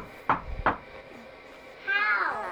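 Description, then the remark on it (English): Two sharp knocks on the door of a straw house, evenly spaced, followed after a pause by a brief high, warbling tonal sound over a faint background hiss. “And the youngest little pig, whose house was made out of straw, heard a knock at her door.”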